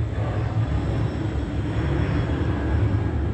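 A steady, broad engine roar of an airplane passing overhead, loud and continuous with a deep low rumble throughout and no voices; a second plane passing seconds after an earlier one.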